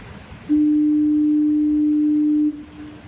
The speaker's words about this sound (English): Okay, this is a recording of the Fort Amherst foghorn.